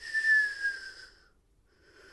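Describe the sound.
A voice imitates a man's squeaky whistling nose as he breathes out: a thin, high nasal whistle, a sustained wavering tone lasting about a second, fading out, then starting faintly again after a brief pause.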